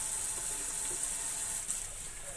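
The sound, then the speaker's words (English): Water runs steadily from a tap with a constant bright hiss as someone washes their hands under it before mixing burger meat. No one speaks, and the flow stays even throughout. “So once we're about ready, I'm going to wash my hands one more time.”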